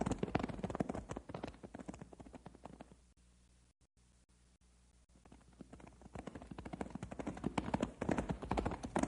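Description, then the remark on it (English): Hooves of several ridden horses, including Matilda and Storm, clip-clop on a trail in a quick, uneven patter, fall silent for a couple of seconds midway, then start up again and grow louder toward the end. “Say, let's hold it up here! Whoa, Matilda! Whoa, Storm! Whoa!”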